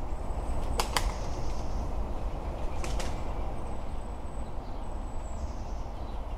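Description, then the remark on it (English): Wood pigeon wing claps as it takes off in display flight, clapping its wings together: two quick bursts of sharp, dry clapping about two seconds apart, heard over a steady hum of town background noise with no talking. “Other sound I was quite pleased to get, like when a wood pigeon takes off and does the little clap clap display flight.”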